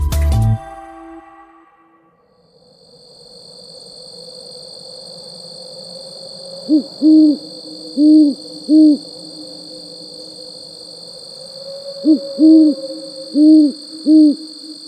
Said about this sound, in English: Owls are intriguing, majestic birds with their large eyes, ear-like tufts on their heads, noiseless flight, and characteristic nighttime hoots.